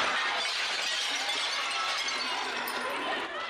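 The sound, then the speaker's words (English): Glass shatters and crashes continuously for a few seconds, a loud, dense wash of breaking store-window glass as protesters smash into luxury stores in Soho, Manhattan, New York City, during the George Floyd protests, with muffled voices in the background. “Through the night, protesters smashed into luxury stores, stealing items and clashing with police.”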